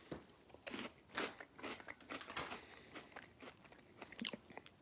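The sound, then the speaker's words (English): Someone bites into and chews crunchy, oily beer-battered deep-fried snacks, with repeated sharp crackly bursts in an uneven rhythm. No one speaks. “They're crunchy, they're substantial, they're kind of on the oily, kind of have like an oily texture.”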